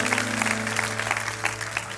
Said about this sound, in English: Give Jesus a hand clap today. I'm telling you. God loves you.